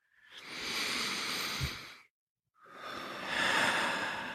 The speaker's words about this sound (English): And just maintaining that soft focus, just take a couple of big, deep breaths. So just breathing in through the nose.